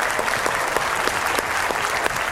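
An audience breaks into steady applause, a dense wash of many hands clapping with no pauses, holding an even loudness throughout the short stretch.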